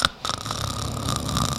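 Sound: person imitating snoring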